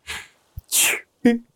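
A single loud sneeze with a sharp breathy burst, followed by a short voiced exclamation; brief and abrupt with no other talking.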